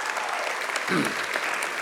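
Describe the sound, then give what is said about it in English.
Steady applause from an audience, a dense, even patter of many hands clapping for about two seconds, with a brief low murmur rising partway through. “Don't clap yet.”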